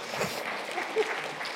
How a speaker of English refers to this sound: All right, give these guys a round of applause.